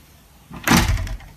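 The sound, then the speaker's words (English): A door swings shut with a single solid thud and a brief rattling tail as it is closed and locked, with the key left in the lock. No one speaks. “Why did you lock the fucking door?”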